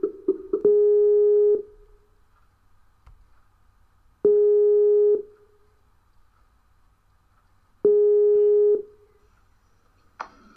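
A telephone ringback tone sounds three times, each steady mid-pitched beep lasting about a second with long silent gaps between, preceded by a few short clicks and tones as the number is dialed.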